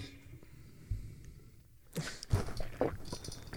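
After a quiet stretch, a wet gulping sound follows as someone swallows saliva, with a couple of short throaty clicks and mouth noises right at the microphone.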